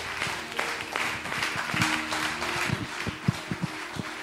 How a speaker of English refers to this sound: Can you give the Lord a big round of applause?